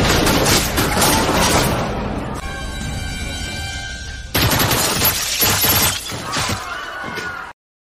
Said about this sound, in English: We're already in like a post-apocalyptic city. Is fucked up. The city is fucked up, dude. Like explosions, missiles. It is chaos, you guys. Like it's insane.